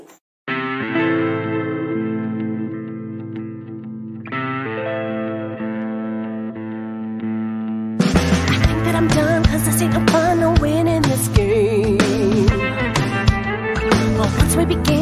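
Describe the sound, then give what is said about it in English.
A song, the title track of an EP, opens with loud, sustained chords in two long swelling phrases, then about halfway through a full band with pounding drums and distorted, effect-heavy guitars crashes in. “Why am I not listening to that in the background, Leo? You're going to listen to it right now.”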